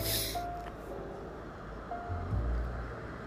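A Silverado pickup truck drives by with a steady, low rumble of engine and tire noise that swells slightly toward the end, with a brief hiss at the start and no voices.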